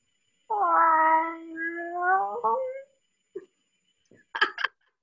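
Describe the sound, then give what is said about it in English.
A person imitates a cat's meow with one long, drawn-out, wavering cry, fairly loud, followed by a few brief, quieter sounds. “I really would love for you to give me your best meow.”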